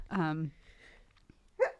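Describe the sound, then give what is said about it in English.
A single sharp, voiced sneeze bursts out, followed by a quiet pause and a short vocal sound near the end. “God bless you.”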